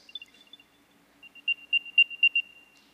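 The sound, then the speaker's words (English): A series of high-pitched electronic beeps, a few quick faint chirps first, then louder repeated tones in a steady rhythm, set off from the Find My app on a phone to locate lost keys fitted with a tag, with no talking. “It tells you, so I'll be looking for my keys, and I've got to go somewhere, and when I cannot find my keys, I come over here to my phone, I open the little Find My app, I come over here, I go to devices, and I do this.”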